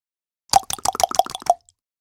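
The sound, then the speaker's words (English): A sound effect of desperate knocking on a door: a rapid, frantic burst of about eight hollow knocks crammed into roughly a second, each hit with a plopping, mid-pitched ring, followed by silence. “Knock on door. Desperate.”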